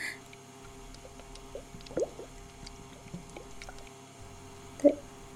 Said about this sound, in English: They melted. They're dripping.